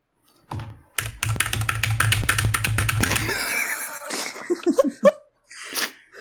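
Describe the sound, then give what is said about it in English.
Rapid, crisp clicking of a Durgod Hades 68 mechanical keyboard with Kale Box Jade switches being typed on, a dense run of sharp keystrokes lasting a couple of seconds, followed by a few scattered breathy, snuffly noises. “I have a Durgod Hades 68 with Kale Box Jade switches.”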